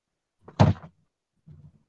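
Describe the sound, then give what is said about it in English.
A man slams his desk: a heavy, dull thump, followed a moment later by a softer, muffled knock; fairly loud with nothing else around it. “He just the door on us. Yeah, slamming his desk.”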